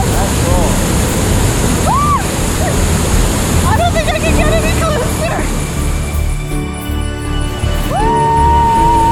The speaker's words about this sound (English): It's pretty much the perfect waterfall to visit in Malaysia. Not too many people there, gorgeous setting, the sun shines from right over the crest of it, sparkling across the water, and we could easily take a dip in the nice, cool, refreshing pool.